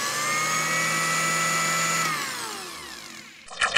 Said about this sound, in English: Were you supposed to put it in a blender? Let's put the episode in a blender and hit liquefy.